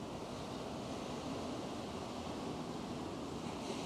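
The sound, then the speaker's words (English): Steady ocean surf washes continuously, a soft, broad rushing with no distinct breaks between waves, fairly quiet and even throughout, with no voices present. “Just listen to the calming waves as you feel the warmth.”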